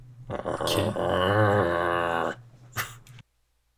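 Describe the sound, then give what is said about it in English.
Someone imitates a wolf growling at approaching guards: a single rough, sustained snarl lasting about two seconds, fairly loud, followed by a short breathy huff before silence. “The wolf is also, as the guards approach, just growling.”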